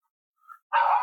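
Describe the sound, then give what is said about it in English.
A dog named Indy, kept inside, gives a short whine, then lets out one loud bark that cuts off abruptly, with no voices present. “we actually have Indy inside, and she's still making her voice heard.”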